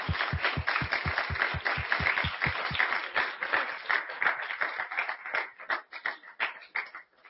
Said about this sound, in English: They have both done a tremendous job and served this district well. Can we applaud them for that?